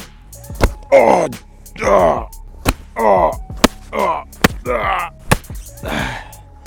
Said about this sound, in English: I love slapping around people. It really makes my day.